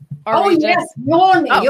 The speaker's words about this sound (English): And you are waking in a pool of sunshine and yawning and stretching with that lovely, sensual pleasure. Oh, and rippling your spine. Are we adding sound?